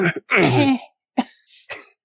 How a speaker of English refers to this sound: You hear the kind of tinkling cough at the back of your head, the throat clearing